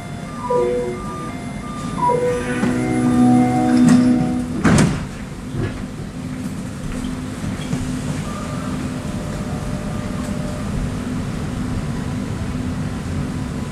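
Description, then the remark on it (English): A REM light-rail train at Gare Centrale (Central Station) in Montreal: its automated door chime plays a short melodic sequence, the sliding doors thud shut, and a steady low rumble follows as the train departs toward Brossard on Montreal's south shore. No one speaks. “I'm going to take the REM all the way to the south shore of Montreal.”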